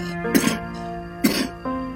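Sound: coughing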